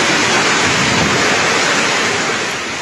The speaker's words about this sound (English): Video shared on social media showed torrents of water flowing down narrow streets as large hailstones fell. The unusual summer weather came a day after authorities issued a yellow alert for rain and high winds. That storm lasted about 15 minutes.